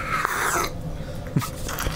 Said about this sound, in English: That was a solid slurp sound. Yeah. Ooh. Yeah, no, there's a burn. There's definitely a burn from that vodka.